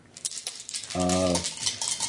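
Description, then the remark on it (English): Dice rattle and clatter across a hard tabletop in a quick burst of small clicks and taps, with a brief low hum in the middle. “Come on, Dice. Don't be a dick.”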